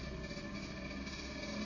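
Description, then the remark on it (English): A motorbike outside drones steadily in a low, rough rumble with a faint higher hum, holding an even, fairly quiet level throughout with no voices over it. “Sorry, that's not my stomach, that's a motorbike outside.”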